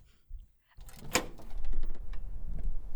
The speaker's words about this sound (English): close that door. You're letting all the cold air in.